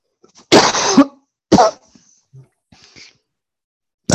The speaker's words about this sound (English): As soon as he did the first cough. As soon as the first one came out, he was like, I got to fucking just choke. Oh, you can't hear it, but he's fucking over there dying.